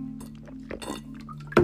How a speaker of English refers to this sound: But sorry, did that sound like I farted? I just had a drink of water and I'm just like literally parched right now.